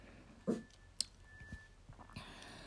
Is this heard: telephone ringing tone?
no